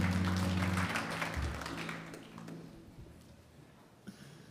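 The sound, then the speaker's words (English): A crowd applauds the worship team, clapping together in a dense, steady patter that gradually thins and fades away, with a low sustained musical tone underneath at the start. “I'm just sensing in the room that you wanted to clap a little longer than that, didn't you?”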